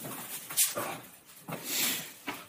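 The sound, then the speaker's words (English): A few scattered, quiet scuffs and taps of a dog's paws as it runs across a hard floor, sparse and irregular over a soft background hiss, with no one talking. “The dog, I believe, is running across the floor as we listen in here.”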